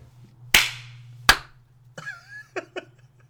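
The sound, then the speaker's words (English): Two sharp, loud hand claps about a second apart, made to sync audio tracks, each with a short ringing tail, followed by brief bits of talking over a steady low hum. “Well, this is why we do the clap.”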